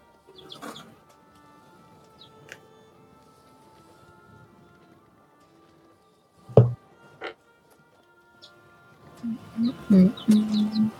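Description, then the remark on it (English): Growing young chickens kept in a house peeping in scattered short, high calls over a faint low hum, with a sharp knock partway through and a busier cluster of chirps and clucks at the end. “Oh my God, I can hear your chickens now, babe.”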